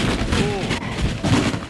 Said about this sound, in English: Ooh. I love fun with sound effects. Oh, my God! Titanic flutes and a body falling downstairs. Ratings gold.